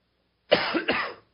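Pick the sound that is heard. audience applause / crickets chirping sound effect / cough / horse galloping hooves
cough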